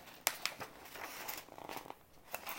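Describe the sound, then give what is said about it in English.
Soft, crisp rustling of stapled paper pages being handled, with a few sharper crinkles and snaps scattered through a couple of seconds, fairly quiet, with no talking. “My paper's stapled together so I can't see it.”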